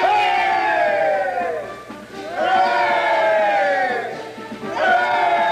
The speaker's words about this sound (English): Hey there! Look at the dandy mechanics! Give them three cheers, boys! Three cheers for the dandy mechanics!